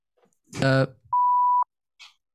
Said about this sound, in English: Oh, you guys can't hear the beep, can you? Oh, we can hear it. We heard it.